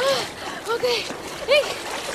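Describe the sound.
Continuous splashing and slapping in water as someone kicks and slaps the water trying to reach a paddle in strong wind, busy, with brief shouted voices rising over the churning noise.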